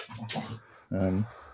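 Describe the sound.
A rough, raspy cough bursts out close to the mic, followed after a short pause by a brief voiced, throaty sound, like a groan or clearing of the throat.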